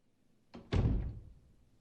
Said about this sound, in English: Fridge comes on, and it's just that sound of, you know, the fridge cooler turning on, and it's introducing that maybe she's not completely alone.